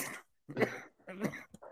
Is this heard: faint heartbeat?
no